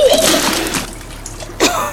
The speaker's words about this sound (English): No dust on me this time, just a lung full of water spat in his face.